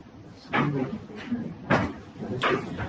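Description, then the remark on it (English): A few sharp wooden knocks and rattles from a cupboard door being opened, spaced over a couple of seconds, with a voice murmuring faintly underneath. “Can you open that cupboard?”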